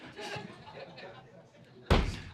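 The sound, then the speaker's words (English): A single heavy thud of a chair set down hard on a stage at a school used for church services, loud, cutting through a murmur of voices and room noise before it. “Help me get a chair. I got all types of stuff on the stage.”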